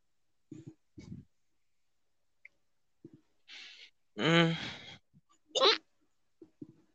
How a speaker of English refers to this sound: Along with the goddamn hiccups that I can't fucking get rid of. Also. And it's irritating, but yeah.